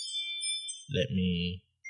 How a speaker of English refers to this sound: It's our Ring doorbell. So this is why I don't like having Ring doorbell and then my phone.